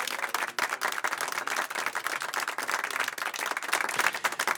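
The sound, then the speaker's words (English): Steady applause from a crowd, honoring a CPR Classical voice's recent induction into the Colorado Broadcast Pioneers Hall of Fame, a dense patter of many hands clapping continuously for several seconds at a moderate, even level with no voices. “Some applause for that.”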